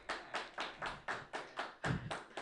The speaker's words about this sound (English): Are you giving yourself an applause break? Is that what's happening at this time?